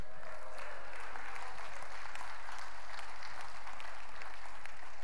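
An audience breaks into steady, sustained applause, a dense wash of many hands clapping at an even level for about five seconds with no clear speech on top.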